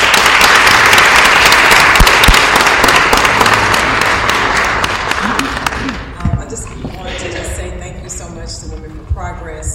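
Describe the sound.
Loud, steady applause from an audience for a woman being introduced, a candidate for Senate House District 68, fills the first six seconds, a dense wash of clapping that then fades out, leaving murmuring voices and a few scattered claps.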